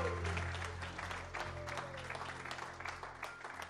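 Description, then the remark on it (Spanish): A crowd claps steadily for several seconds, a dense, even patter of many hands at moderate volume with a low background hum underneath. “Give the Lord a hand.”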